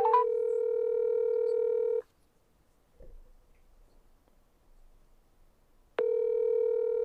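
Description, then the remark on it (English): A phone's ringback tone on an outgoing call to a restaurant: a steady two-second burst, a roughly four-second pause with faint background noise, then the tone starts again, clear. “No, come on, ring. Is it ringing?”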